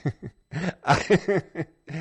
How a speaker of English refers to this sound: excuse me. Your questions triggered a coughing fit from me.